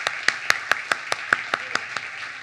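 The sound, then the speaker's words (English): Steady, rhythmic clapping, about a dozen sharp claps in quick even succession, rising over a continuous wash of crowd noise from an audience applauding the people who have just accepted Christ; no distinct cheers stand out. “Let's give it up for those people that accepted Christ.”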